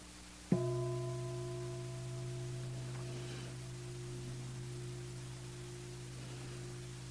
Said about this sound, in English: In a moment, I will ring the bell. Listen to the bell and see what feeling tone arises from the sound of the bell for you. Pleasant, unpleasant, or neutral.